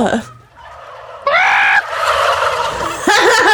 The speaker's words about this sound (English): I'm just going to play turkey sounds for the first 3 minutes of this episode.